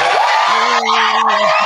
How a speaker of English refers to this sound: But let's give good old Frank a nice round of applause.